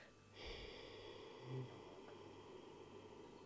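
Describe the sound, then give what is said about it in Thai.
A long, slow exhale, counted from one to eight as a breathing exercise, begins after a brief pause and continues steadily to the end, a soft breathy rush with a slight swell near the middle. “มาลองดูไหมหายใจเข้านะ 1-2-3-4 เนี่ยหายใจเข้าเนี่ยแล้วจังหวะหายใจออกนะอุ๊ยหายใจออกอ่ะมันยาวได้จริงๆเดี๋ยวลองทำตามนะหายใจออกนับ1ถึง8นะหายใจออก”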